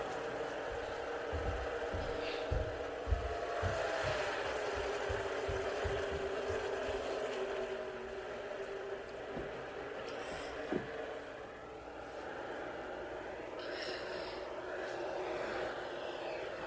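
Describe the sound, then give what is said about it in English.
Loud, sustained engine roar from a pack of race cars at the start of a race at Kentucky Speedway, with Kyle Busch as control car on the outside, rising tones as engines rev and accelerate, steady and dense throughout with a passing whine near the middle. “They address themselves to the start line.”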